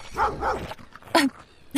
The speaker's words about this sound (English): Goodness! 4 dogs walked out of the woods. Their heads were on low, and they were snarling. Each one had a collar from our research facility.